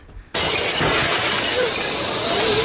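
After a brief quiet moment, glass suddenly shatters with a loud crash, and the bright, hissing spray of breaking shards keeps ringing out for a couple of seconds.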